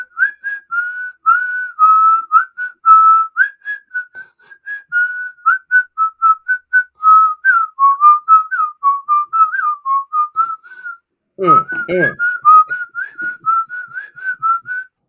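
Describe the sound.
A person whistles a slow, wavering tune, the melody from a film's hospital scene, a steady stream of notes with a brief break and a sharp burst of noise near the end before the melody resumes.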